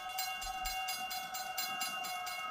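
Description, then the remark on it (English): A train rolls past a small railroad junction just across the border into Oklahoma on an airless, dry day, its wheels clacking in a steady rapid rhythm while a sustained high tone rings over the loud, continuous rumble. No voices. “I'd stopped the car at a sleepy little junction just across the border into Oklahoma to let a train pass.”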